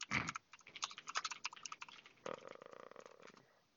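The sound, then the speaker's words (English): Rapid, uneven clicking of keys on a computer keyboard, with a brief pause midway before a quicker, steadier burst of keystrokes. No one speaks. “Any much typing. Yep, much typing.”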